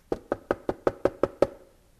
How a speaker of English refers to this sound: and this knock was so persistent, got him up out of his chair in his study, he came to the front door.